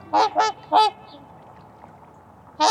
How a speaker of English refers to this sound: With a voice like that, there's no wondering where trumpeter swans get their name. Weighing over 25 pounds and measuring about 5 feet from beak to tail, these swans are the heaviest flying birds in North America.